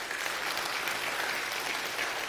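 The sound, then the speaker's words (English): A church audience claps for friends of the pastor, steadily, a dense, even wash of many hands with no pauses and no voices, holding at a moderate level throughout. “Yeah, if you knew them, you wouldn't be clapping.”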